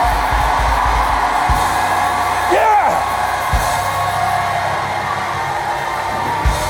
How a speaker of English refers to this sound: If any of you lack wisdom, shout now. No, don't shout the word now. I mean shout at this moment. No, if you lack wisdom, let me put it another way. If you'd like to enter into God's wisdom, shout now.